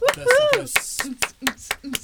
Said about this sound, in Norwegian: Yay! Vi klapper.